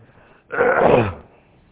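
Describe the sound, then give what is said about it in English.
A single forceful nose blow: a loud, breathy, honking burst lasting under a second, then quiet again. “Excuse me, I may have to blow my nose once in a while.”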